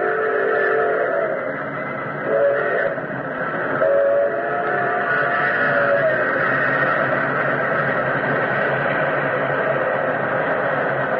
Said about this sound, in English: Like an incredible, fiery-eyed monster, the express engine roared out of the tunnel mouth.